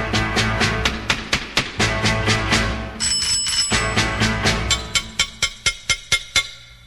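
A bicycle bell rings in rapid, repeated bright dings, a steady fast rhythm of sharp metallic strikes that carries on for several seconds, loud and unaccompanied by voices.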